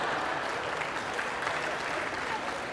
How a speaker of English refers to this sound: A few men are applauding me. Thank you.